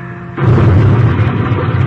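plane crashing into hills

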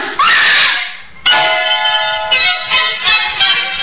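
woman screaming

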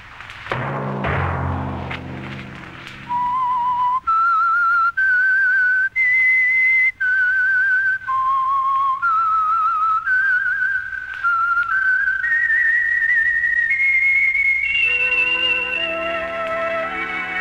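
whistled theme melody

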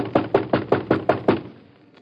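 banging on a door

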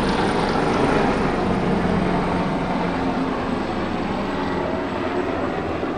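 helicopter flying overhead

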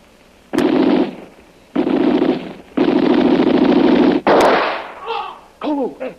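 gunshot

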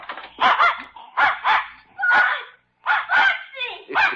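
dog barking and whimpering

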